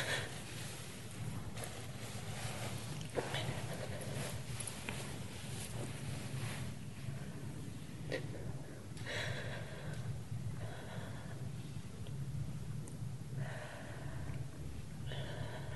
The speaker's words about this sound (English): Just breathe. Respire simplement. It'll come out on the breath. Ça va sortir avec le souffle. Just take deep breaths. Une profonde inspiration.